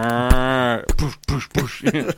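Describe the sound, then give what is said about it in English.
A cow gives one low, steady moo lasting under a second, fairly loud, and then a person starts talking in short bursts right after it. “Get out of here, cow.”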